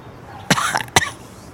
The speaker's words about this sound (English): I don't know why I want to cough after drinking your root beer.